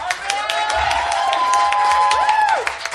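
A crowd at a live show claps steadily for a few seconds to vote by applause for a performer, the dense patter of hands mixed with rising and falling whoops and cheers that stay fairly loud throughout.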